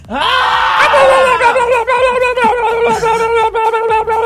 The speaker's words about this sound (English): Can we do just a quick scream? Again? Yeah. I mean, I feel like we all need it. Three, two, one.